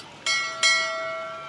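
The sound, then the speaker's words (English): A buoy bell, the character Bumble Bell activated in fog to help the Hero Hotel cruise ship, clangs twice in quick succession, each strike loud and metallic, its bright ringing tones lingering and slowly fading afterward. No one speaks. “Stand back and let Bumble Bell do his thing. Buoy Bell, activate.”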